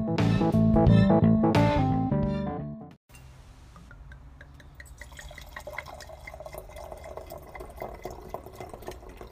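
Wine pours from a bottle. It opens with a few seconds of loud, resonant glugging, then settles into a quieter, steady trickle of liquid filling a glass, with no voices.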